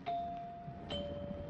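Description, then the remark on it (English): A house doorbell chimes a two-note ding-dong, the first tone ringing out and the second, slightly lower, following about a second later, both sustaining clearly over faint background noise. “Nice chimes.”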